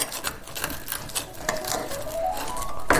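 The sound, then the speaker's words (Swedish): A chanterelle mushroom toast with parmesan crunches as it is bitten and chewed: a run of dry, irregular crackling snaps at moderate volume with no talking, ending in one sharper, louder crunch. “Ni hör vad det knastrar här.”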